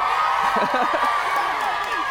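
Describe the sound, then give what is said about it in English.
An audience claps and cheers in a steady, dense wash of applause that holds for about two seconds, with a few voices calling out over it. “I'm never going to tell him that got an applause.”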